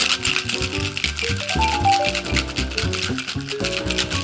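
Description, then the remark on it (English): Ice rattles rapidly and steadily inside a cocktail shaker holding a Last Word cocktail of gin, green chartreuse, maraschino liqueur and lime juice, a fast rhythmic shaking that runs the whole time over a bed of background music, with no talking. “And let's give that a good shake.”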